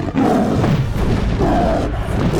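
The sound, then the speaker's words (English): A deep, loud roar of the mythical beast Fix as she flies up into the air and launches herself at Oedipus, rumbling and sustained, rising in two surging swells across about two seconds with no voices. “Fix flew up in the air, roared, and launched herself at Oedipus.”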